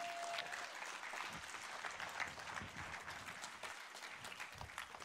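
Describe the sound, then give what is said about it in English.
Steady applause from an audience for the pillow ministry, a dense wash of many hands clapping at an even level throughout, with no pauses or voices standing out. “Let's applaud our pillow ministry.”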